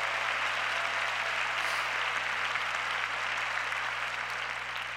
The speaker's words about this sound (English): Now everybody give the Lord a hand clap. Up in the mezzanine, help me up there. That's right.